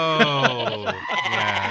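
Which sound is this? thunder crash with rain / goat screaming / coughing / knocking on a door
goat screaming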